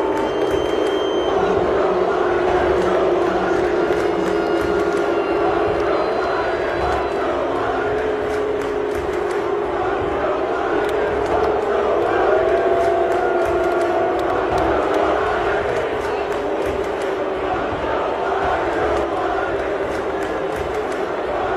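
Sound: crowd booing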